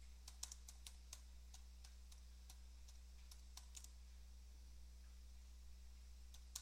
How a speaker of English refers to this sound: I'm typing. I am such a bad typer. I should have taken typing when I was in high school.